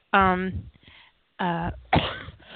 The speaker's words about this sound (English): and maybe I won't cough through the next one too much. Maybe if I did it laying down.